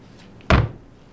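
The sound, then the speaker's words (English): A door is pulled shut with a single solid thud, fairly loud, its low rumble fading quickly. “Close the door after you.”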